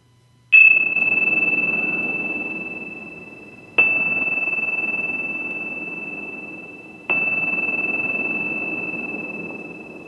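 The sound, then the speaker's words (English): Bells are rung three times to close the radio show Transformational Healing with Dr. Bonnie Morrow, about three seconds apart, each strike a bright, high ringing tone that sustains and slowly fades until the next. No voices are heard. “And I'm just going to ring the bells 3 times.”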